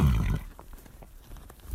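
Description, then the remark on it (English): A little Arabian mare gives a short, deep snort, a breathy rumbling burst, followed by quieter rhythmic tapping, while being ridden to herd cows. No one speaks. “So that's Pistol. She's my girl. She's a little Arabian mare that I got.”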